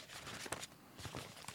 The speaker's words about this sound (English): That was supposed to be the sound of a paper ruffling, but I don't know if that was.